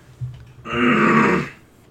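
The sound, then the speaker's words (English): A single loud, rasping throat clear lasting under a second, with a faint low thump just before it and quiet afterward. No one speaks. “I need to clear my throat.”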